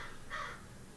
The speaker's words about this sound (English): If you heard bird noises over that last speech, there is a crow on the chimney, and our cat is losing her mind.